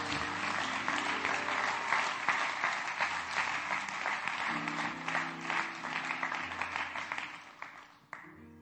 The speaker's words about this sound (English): Come on, clap your hands to the Lord and give him praise.